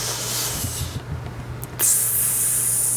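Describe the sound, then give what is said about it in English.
A person imitates a snake with a long, breathy hiss, pauses briefly, then hisses again louder and steadier until the end, over a low steady hum. “I'm a snake.”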